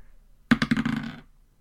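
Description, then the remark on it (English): Physical dice, used instead of electronic ones, clatter across a hard surface in a quick burst of rattling clicks, several sharp bounces running together for under a second before settling into silence. “And this time I'm going to use dice instead of electronic ones because I haven't rolled above a 6 on my computer.”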